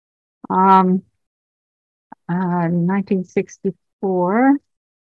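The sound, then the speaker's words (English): A cat wanting to be fed meows insistently: three drawn-out, wavering cries with short pauses between, the middle one broken by a few soft clicks and bumps. “Sorry, we have a kitty cat wanting to be fed here.”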